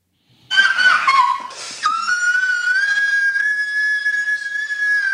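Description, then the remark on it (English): A loud, high-pitched squeal from a video being played starts after a brief silence, wavers and breaks for a moment, then holds as one steady, piercing tone for several seconds with no talking. “Warning. It's quite a squeal.”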